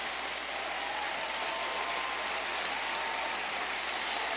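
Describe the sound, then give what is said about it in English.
A crowd applauds steadily throughout, a dense wash of many hands clapping at once with no pauses or voices standing out, sustained at an even level from start to finish. “I appreciate your claps.”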